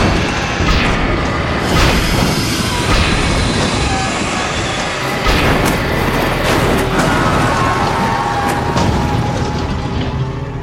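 A train roars past with a loud, continuous rumble, broken by sharp metallic bangs and crunching impacts as it strikes a car stalled on the tracks and pushes it off the road and down an embankment.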